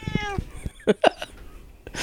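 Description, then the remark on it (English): A female cat meows: one drawn-out, harmonic meow followed by a couple of short, clipped mews, with a brief breathy rustle at the end. “And, of course, well, hello, cat.”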